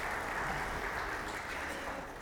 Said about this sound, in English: Let's give them a round of applause for doing such a good job.